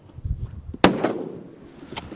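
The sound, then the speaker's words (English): A single sharp rifle shot, fired while hunting by a man standing in a boat slowed to a crawl on the tundra, cracks out after a low rumbling lead-in, its loud bang trailing off in a fading, ringing tail, with a couple of faint pops near the end. “Tony stands up and sets his rifle, while his wife and son tense in anticipation.”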